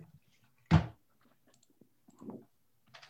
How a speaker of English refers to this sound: Let me shut the door just a little bit because people are starting to like go outside and stuff now. So hold on one sec.